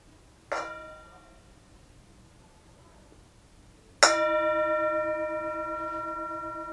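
A bell is struck twice: a soft strike that fades quickly, then a louder, bright strike whose steady harmonic tones ring on with a slow, wavering shimmer. No voices are heard.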